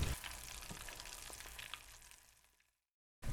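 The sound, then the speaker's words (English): Steady crackling sizzle of food frying in hot oil in a deep fryer, dense, with a few sharper pops, fading out before a brief silence and an abrupt return of the noise. “so share a tip I learned a long time ago, which is never, ever, ever drop anything into a deep fryer with your hands. Always use tongs.”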